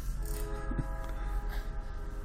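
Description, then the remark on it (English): A train rumbles steadily in the background, a low continuous roar with faint tonal whine, like rail cars rolling past. “There's a train in the background.”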